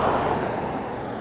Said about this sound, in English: Fuck you, car.